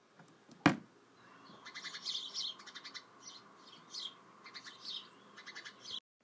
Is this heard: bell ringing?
no